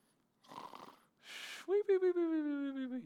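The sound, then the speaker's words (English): A voice imitates a cartoonish snore like one of the dwarves in Snow White: a rough, rattling snort on the inhale, a breathy rush, then a long, wavering whistle on the exhale, loud. “I've never heard anyone snore like that.”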